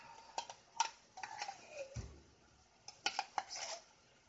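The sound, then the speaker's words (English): Cans being opened with a hand can opener: a quiet run of sharp metallic clicks and clinks at an irregular pace, broken by one dull low thump midway, with no talking. “So I should renew my own energy and open the damn cans.”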